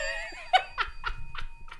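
A bell rings with bright, sustained overtones that fade over half a second, followed by a string of short, rhythmic bursts of laughter from a group.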